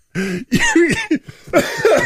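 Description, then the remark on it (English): A person coughs several times in a row, loud, with harsh, raspy, voiced hacks coming in irregular bursts over about two seconds. “You can reach me if I don't die of a cough.”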